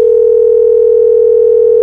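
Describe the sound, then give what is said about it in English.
A steady, loud telephone dial tone, heard while a call is being placed, holds one unbroken pitch for nearly two seconds, with no voices over it. “we are calling you, and Corey's in the room, too”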